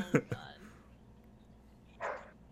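A dog barks twice in quick succession, short, followed after a pause by a higher, brief yelp against a quiet background.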